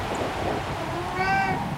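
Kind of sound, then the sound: animal, cat meowing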